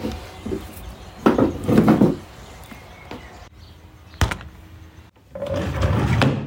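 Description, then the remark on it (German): A desk drawer, in which a laptop is stored, scrapes and rumbles as it slides, with a sharp knock partway through and another longer sliding rumble at the end. It is fairly loud, and nobody speaks. “Das war das Geräusch meiner Schublade, denn auch der Laptop wird bei mir in der Schublade verstaut.”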